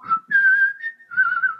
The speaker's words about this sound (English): All right, showing off my whistle.